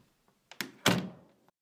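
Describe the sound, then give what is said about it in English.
An office door swings shut: a short latch click, then a heavy wooden thunk that rings briefly and fades into quiet. No one speaks. “The director stood up from the chair that nestled in the corner of the office and opened the door to leave.”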